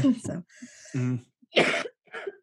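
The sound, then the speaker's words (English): A loud cough rings out in a few harsh bursts, mixed with throat-clearing and short voiced sounds, with brief pauses between them. “Should I move not cough into the microphone?”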